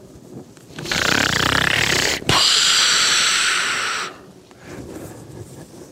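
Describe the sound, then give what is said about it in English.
A person imitates a loud snore, as of Jesus asleep: two long, rough, breathy rasps run back to back with a tiny catch between them, alone, then fading to quiet. “Now that raises the question, did Jesus snore?”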